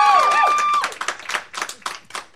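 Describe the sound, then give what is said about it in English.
A short burst of audience applause voting for a contestant in an amateur round of a show: a rising, whooping cheer at first, then uneven, scattered handclaps from a small crowd that thin out as the cheer fades. “You guys are going to vote by a round of applause.”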